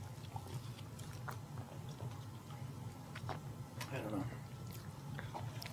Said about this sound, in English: I just got halfway down and they changed. So. Hold on, let me sip some more.